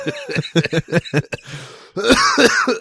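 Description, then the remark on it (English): A quick run of short, sharp coughs, then a rougher burst of coughing and throat clearing, fairly loud with no talking. “You're going to hear some coughing, folks.”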